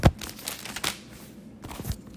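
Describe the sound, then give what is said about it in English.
A book page being turned: a sharp papery flick, then a softer rustle and a final crisp brush of paper settling, with no voices. “Turning the page.”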